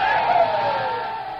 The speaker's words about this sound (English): Give the colonel a cheer, boys! Hooray! Another for the sweetheart of the regiment! Hooray!